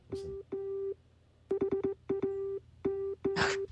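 Morse code beeps in the theme song of the show Ham Nation: a steady mid-pitched buzzy tone keyed into long dashes and a quick run of short dots spelling "ham", with a burst of hissy noise near the end.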